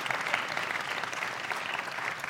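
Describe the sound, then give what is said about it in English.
A church audience applauds steadily for four youth being confirmed on the first Sunday of Lent, many hands clapping in a dense, even wash of sound that holds at a constant level with no voices over it. “Later on, yeah, you can clap for them now.”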